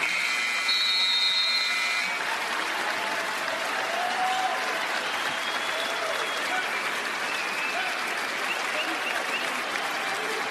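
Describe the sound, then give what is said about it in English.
Sustained applause and cheering from a large arena crowd at a Toronto basketball game as Fred VanVleet holds the ball and the 24-second shot clock runs out to honor Kobe Bryant, a dense roar that stays loud and steady throughout, with a brief buzzer-like tone near the start. “Is Fred VanVleet holding on to it, and the crowd recognizing what this means.”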